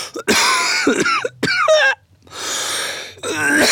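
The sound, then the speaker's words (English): A person clears their throat and coughs several times in rough, raspy bursts, loud and harsh with short gaps between them, without any speech. “Wow, what's wrong with your throat?”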